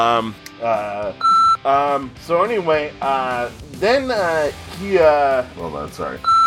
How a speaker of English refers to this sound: Sorry, you might get a beep on my side of the recording at one point.